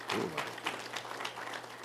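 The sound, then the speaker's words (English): An audience claps together in a dense, steady patter of many hands. The applause stays fairly even in loudness for a couple of seconds, with no clear speech over it. “If you're going to clap, then do it right.”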